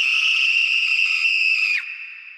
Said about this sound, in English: … screamed as two figures leap out from behind the tree.